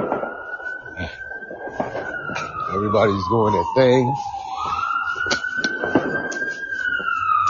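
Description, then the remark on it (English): An emergency vehicle siren wails steadily through the scene, its long sweeping tone rising and falling while a man talks briefly over it amid background street noise. “You hear the sirens, you hear the fireworks.”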